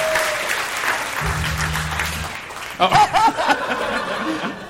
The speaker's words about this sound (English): He got excited. He loves the applause. He just started pressing all of them.